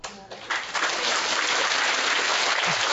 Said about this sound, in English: Just say a word, thank you, and everybody clap, and I talk hours on end, nobody listen.